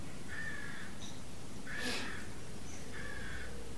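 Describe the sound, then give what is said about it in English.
Three harsh crow caws ring out one after another at a steady pace, the middle one loudest, over a constant low rumble of background noise. “Absolutely, the birds and the coughing and the voice.”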